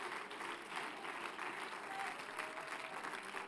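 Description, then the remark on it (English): An audience at a church service claps steadily and continuously in praise of the Lord, a dense wash of hand claps mixed with scattered voices calling out in praise, sustained throughout at a moderate, even level. “If the Lord has been good to you, why don't you take a moment and bless him with a hand clap and with a voice of praise right now.”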